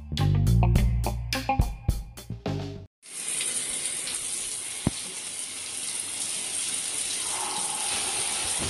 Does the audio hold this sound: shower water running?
yes